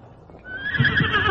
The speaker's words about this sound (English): Did you hear it? Hear what? That. That's a horse somewhere in the distance.